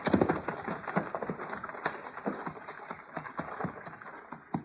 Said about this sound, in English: I don't know, but let's get these horses off the trail. Come on.